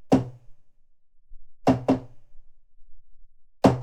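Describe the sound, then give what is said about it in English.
Sharp knocks on a bathroom door in the middle of the night, otherwise quiet: a single rap, a pause, two quick knocks in succession, then another knock at the very end. “All right, what would you do if, like, in the middle of the night, you just hear a knock on your bathroom door?”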